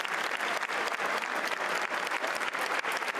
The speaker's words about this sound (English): We might have to turn this down. This would be so much clapping.